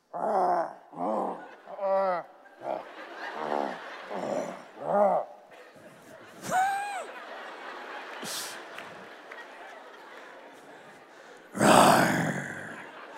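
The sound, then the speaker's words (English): People standing in a semicircle around a speaker make a string of short, growly mock lion roars, one after another, followed by a longer wavering vocal roar and then a loud, harsh burst near the end over a low background murmur. “Look at these intense lions. Make some roar noises.”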